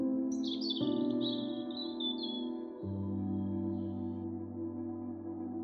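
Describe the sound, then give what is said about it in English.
A little red-breasted robin in a frosty, snowy forest sings a bright chirping song that trills over a soft, sustained musical backdrop, a cluster of quick high tweets that fades out after a few seconds while the music carries on. “there lived a little robin. He had bright eyes, a cheerful red breast, and a song that could warm even the coldest day.”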